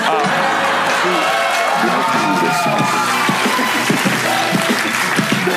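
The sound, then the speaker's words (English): A large audience claps steadily and loudly throughout, a dense wash of hands with scattered cheers, while voices speak over the applause. “Sorry, I know you guys wanted to clap, but everything I'm going to say is going to be amazing.”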